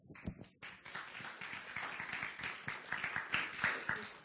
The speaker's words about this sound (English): You're clapping for a constitutional amendment.